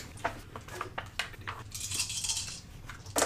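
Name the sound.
dice being rolled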